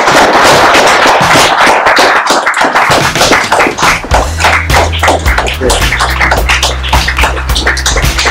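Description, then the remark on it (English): A room full of people claps steadily for several seconds to thank a guest speaker for coming, a loud, dense patter of many hands that keeps going without a break. A low hum joins partway through. “And all that remains for me, before you ask any questions, etc., is to thank Mario on your behalf for coming here all the way, and give him a big applause.”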